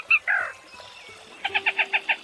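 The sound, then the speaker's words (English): A male black rail gives its territorial and mating call: two sharp, squeaky notes, then after a brief pause a quick run of about six clipped, evenly spaced chirps, clear with no voices. “The small as a sparrow and usually quiet as a mouse, black rail, Lateralis jamesensis.”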